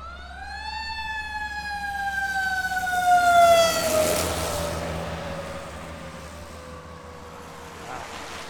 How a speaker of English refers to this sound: Oh, hang on. I got another ambulance, or a fire truck.